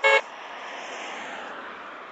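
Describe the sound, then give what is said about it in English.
A car passes by on the street, starting with a brief horn toot followed by a steady, moderately loud rush of engine and road noise. No one speaks. “I'm just gonna let him pass by for a minute. Let's wait till it gets clear.”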